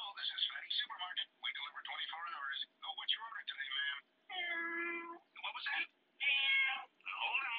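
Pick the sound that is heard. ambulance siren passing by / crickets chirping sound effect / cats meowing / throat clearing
cats meowing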